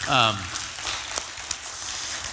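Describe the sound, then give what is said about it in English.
A church audience claps after a brief spoken word, thanking those who helped move the church offices, a steady, moderately loud patter of many hands with a few sharper individual claps standing out. “I hope that was clapping for somebody and not for yourself.”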